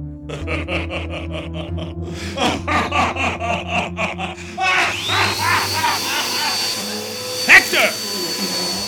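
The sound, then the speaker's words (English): A vacuum cleaner runs with a steady low drone and rhythmic rasping strokes, then swells into a louder, breathier roar for the last few seconds. “I'm hoping you could turn off that vacuum.”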